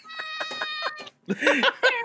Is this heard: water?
no